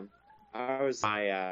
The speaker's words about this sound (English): You might hear a cat. I already have, and I see a tail.